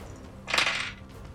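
A short burst of dice clattering and rattling across a hard tabletop, lasting about half a second before settling, with no voices: an action die and two challenge dice rolled for a strike move in a game, landing on 4, 2 and 9.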